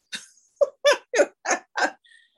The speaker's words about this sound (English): Dog choking on a bone. I thought she was dying in front.